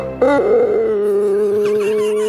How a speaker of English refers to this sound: In the thread under the original video clip, there's another a clip of an old cockerel from Japan, an old rooster that was really old and croaky and started to sound like a motorbike breaking down when it did the morning call for them.